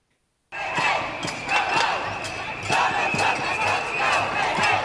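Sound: protest crowd shouting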